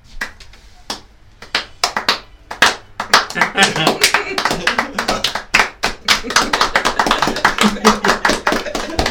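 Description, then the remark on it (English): A group of 20 to 30 men applauds as two people climb aboard a ship, starting with a few scattered claps that quickly build into loud, dense, steady clapping, with faint voices mixed in underneath. “Good 20, 30 men clap as you two climb aboard.”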